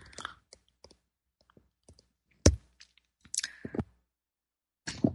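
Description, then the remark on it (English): Someone sips tea: scattered soft mouth clicks and wet smacks, then a sharper slurp, a longer drawn-in sip and a final swallow-like gulp, with no talking. “Time for me to take a sip of my tea here.”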